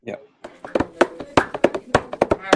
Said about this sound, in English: And you'll hear it, I mean, there's like this female singer who's singing and there are women around her laughing and clapping and drumming.